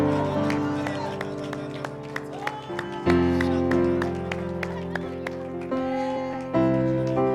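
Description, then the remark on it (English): A standing church audience claps hands in a steady rhythm as praise to God over sustained organ chords, with voices mixed in, the crowd's clapping lively throughout. “Let's stand all over the house and give God a hand clap of praise.”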